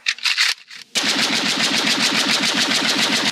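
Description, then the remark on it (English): A few loud, separate gunshots, then a sustained burst of rapid automatic fire rattling on evenly for over two seconds as car tyres are shot out. No voices. “There, that should slow you down. Won't be able to come after us with punctured tyres.”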